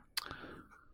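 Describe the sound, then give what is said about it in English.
A dog makes noisy eating sounds as if from a bowl: two quick, sharp clicks, followed by a short ringing tone that fades out. It is fairly faint. “She keeps like, it sounds like she's eating things out of a bowl.”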